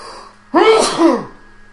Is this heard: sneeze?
yes